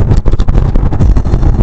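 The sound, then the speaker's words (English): Steady, loud low rumble of road noise inside a moving car on a road trip to Hollywood, with a constant engine and tire drone and some wind buffeting, no voices. “It's going to be a short show, but we're just going to have a little conversation in the car.”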